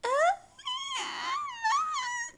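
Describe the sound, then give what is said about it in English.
A voice imitates a crying baby with high, strained wailing cries in three rising and falling bursts, whiny and somewhat screechy, with no other talking. “Can you do a crybaby voice?”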